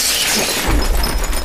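impact, window glass being smashed

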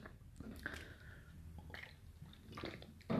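human body sound, drinking water

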